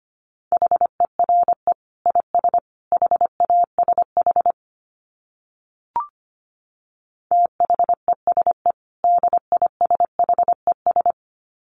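Fast Morse code beeps at 25 words per minute in a single steady mid-pitched tone, quick dits and dahs in two runs separated by a pause broken by one sharp click. No voices.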